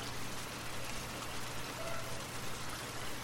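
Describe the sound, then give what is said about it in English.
Steady rain patters on the ground in a dense, continuous hiss of countless drops, soft and even throughout with no voices, like a gentle shower. “Listen to the soothing sound of the raindrops as they patter on the ground.”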